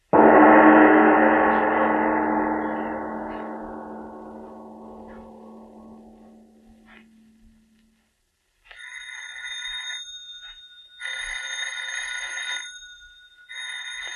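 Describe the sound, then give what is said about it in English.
A deep resonant tone rings out and slowly fades, then a telephone bell starts ringing in repeated bursts, fairly loud, with short pauses between rings and no one talking. “answer the phone, please.”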